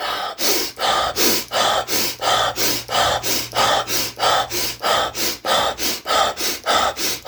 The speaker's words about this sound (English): But when it comes to breathing, it's hyperventilation. You basically breathe in, breathe out really fast.